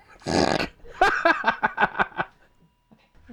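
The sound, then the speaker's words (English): A dog lets out a breathy huff, then a quick run of about seven rhythmic, grumbling vocal pulses, followed by quiet. No one speaks. “Really, dog?”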